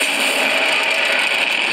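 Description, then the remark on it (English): A giant movie monster's roar, loud, harsh and gravelly, held at a steady level for nearly two seconds with a rough, noisy texture and no voices over it. “I love the roar. I live for the roar.”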